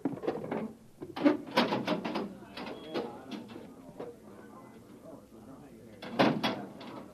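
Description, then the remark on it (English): A heavy access manhole door, leading down to a northbound road, is worked open with a series of loud mechanical clanks and ratcheting scrapes, separated by quieter grinding, then a final sharp clatter near the end. “Now stand away from the door”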